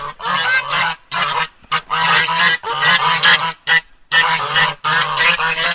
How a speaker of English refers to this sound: So let's see if the geese are very hungry today, and I have a feeling that they might be. Oh, yeah, I can hear them.